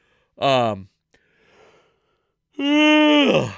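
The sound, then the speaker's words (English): A person yawns: a short, falling vocal groan, a soft breathy pause, then a longer, loud drawn-out yawn that tails off at the end. “It's a yawn.”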